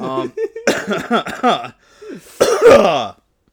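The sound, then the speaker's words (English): A loud fit of repeated harsh coughs and throat clearing, several bursts in quick succession, then a short pause before a final heavy, raspy cough. “Oh, hey, sorry for that cough”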